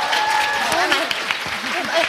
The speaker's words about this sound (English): Can I get a round of applause for our amazing...